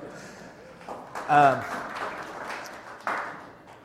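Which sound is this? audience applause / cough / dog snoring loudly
audience applause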